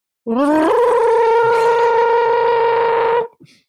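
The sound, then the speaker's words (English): A voice imitates an alarm with a rolled-tongue trill: a loud, rattling tone that slides up at the start, then holds one steady pitch for about three seconds before stopping abruptly. “I might need you to do me a favour here because I don't think I have the capacity to do the gibberish alarm noise.”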